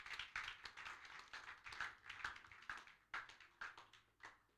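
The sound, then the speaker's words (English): A crowd claps together in a steady, fairly quick rhythm, the sharp overlapping hand claps repeating for several seconds, with no talking. “If you are clapping, clap your hands.”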